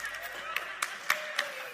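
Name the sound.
audience cheering and clapping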